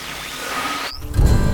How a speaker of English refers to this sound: Huh. Thunder and rain in November. That's new.